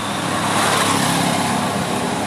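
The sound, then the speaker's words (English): A car reversing, its engine giving a steady low rumble under a broad hiss of road noise, fairly loud and continuous for a couple of seconds with no voices. “Dude was reversing his car.”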